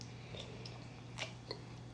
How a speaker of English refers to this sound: Let me take a sip.